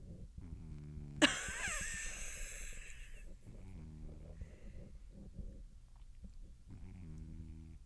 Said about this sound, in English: No, my cat's snoring really loud.